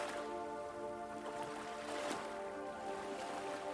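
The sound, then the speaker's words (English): Ocean waves roar and hiss steadily, with a couple of brief splashing surges, all layered over a constant low droning hum. No one speaks. “The sound of the mighty ocean presents itself as a deep roar and a low hissing and splashing.”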